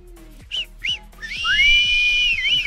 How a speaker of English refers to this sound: If this were a real bit of extra time, this is when the ref blow the whistle because it's finished.